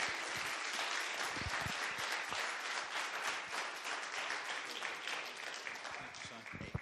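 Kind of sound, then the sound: crowd, audience applause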